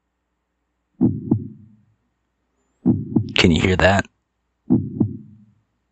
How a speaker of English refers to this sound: That was my heart beating.